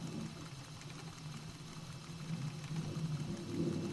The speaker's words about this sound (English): Thunder. This early in the season.